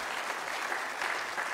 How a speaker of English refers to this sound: So thank you for opening your house, and for those that who put all this together. So maybe we can give them a round of applause just to say thank you.